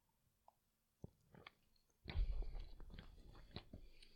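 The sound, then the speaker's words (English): A few faint mouth clicks, then a noisy sip from a drink with wet slurping and swallowing sounds lasting a couple of seconds. No one speaks. “Okay, I want a little sip, and then we'll moment of silence.”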